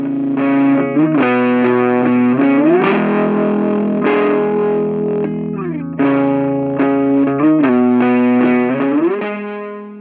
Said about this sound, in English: I recorded most of the guitar parts for this song using my trusty Marshall full stack. Really, it's just this tiny novelty practice amp, but the tones sound surprisingly big, wouldn't you say?